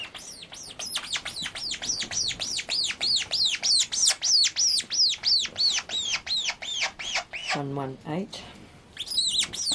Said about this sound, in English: So when the birds are making these noises, it's just a natural noise that the birds make. It's not because they're in pain or they're being handled. This is just a natural noise that birds make, particularly when they're being fed.